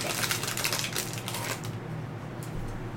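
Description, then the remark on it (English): Crisp paper rustling and crinkling for a few seconds as a slip of paper bearing a conversation topic is picked out and unfolded, with soft scratchy handling sounds and no voices. “You just take a piece of paper. Yeah, just pick one. Pick a piece of paper, read what, it out loud, and then we'll says.”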